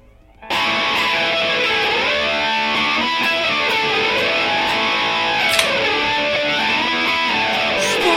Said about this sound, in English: Love that distortion. That's exactly how I feel tonight.